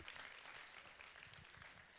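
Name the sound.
audience clapping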